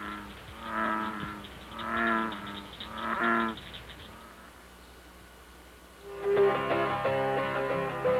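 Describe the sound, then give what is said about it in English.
A group of bullfrogs gives three deep, droning calls about a second apart, then after a brief lull many voices overlap into a dense, steady chorus of low throaty bellows. “Here's what a group of bullfrogs sound like.”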